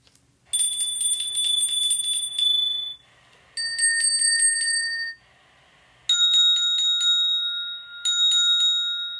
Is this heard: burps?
no